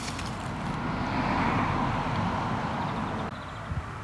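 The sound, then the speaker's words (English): A steady, rumbling wash of street traffic on Balls Pond Road in northeast London, continuous, with a dense low roar and a slight drop in intensity near the end. No voices. “I'm standing on a road in northeast London, Balls Pond Road to be precise.”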